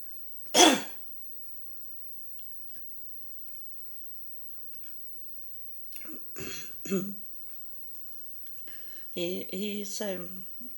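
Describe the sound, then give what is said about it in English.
A single sharp, loud cough breaks the quiet near the start, followed after a long silence by several short, rough throat-clearing bursts and a few low voiced sounds. “He's sorry for making me coughing”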